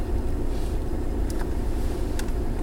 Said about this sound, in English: Hear the hum of the engine.